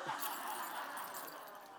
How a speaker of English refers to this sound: Look at all these keys. I put a bunch of keys together on purpose. I don't walk around like that.